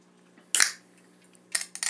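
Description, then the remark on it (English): A can of Liquid Death cracks open with a sharp metallic pop and a short fizzing hiss, followed a second later by two more quick crackling bursts over a low steady hum. “About to crack open a can.”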